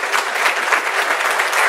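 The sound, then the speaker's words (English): An audience gives another round of applause for the organization's leader, a dense, even patter of many hands that holds at a constant strong level for the full stretch, with no voices standing out. “Can we give her another round of applause, please?”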